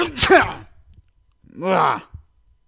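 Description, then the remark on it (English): A sharp sneeze bursts out, followed after a brief pause by a drawn-out, groaning vocal sound. “I got sneezing everywhere.”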